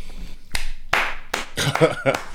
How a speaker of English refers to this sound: That one hit. I've got to clap you.